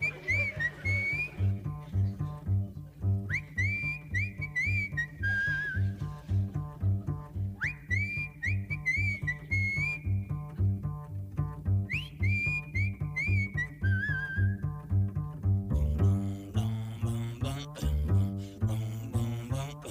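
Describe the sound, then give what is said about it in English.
A bright whistled melody rides over a steady jazz band accompaniment, coming in short sliding phrases that repeat several times before the instruments carry on alone near the end. “I was saying it's a bit of a, in terms of Muppet World, it feels a bit of a proto-Walter with the sort of the whistling.”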